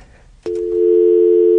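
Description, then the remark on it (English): An electronic phone ring tone signalling an incoming call cuts in abruptly after a short quiet stretch and holds as one loud, steady, buzzy tone to the end, with no voices. “Oh, whoa, we are already getting a call. Oh, hang phone call is coming hot at the top.”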